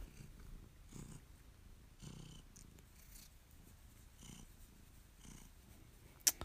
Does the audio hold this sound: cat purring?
yes